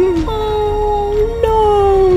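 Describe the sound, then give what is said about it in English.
A wolf, backing away with its tail between its legs and head bowed, whimpers in one long, drawn-out whine that wavers slightly in pitch, fairly loud, with no talking over it. “Afterwards, realizes what it's done, moves back, puts its tail between its legs, and bows its head and whimpers.”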